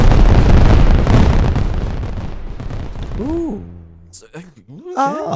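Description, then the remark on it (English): A dense, loud barrage of fireworks crackling and booming for about three seconds, then fading as voices rise and call out over the tail of the noise. “That's what people do with fireworks, isn't it?”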